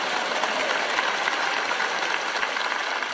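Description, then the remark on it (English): A crowd claps steadily for several seconds, a dense, even wash of many hands with no clear pauses and no speech over it. “And we love that scripture and we clap for it, but listen to what it really says.”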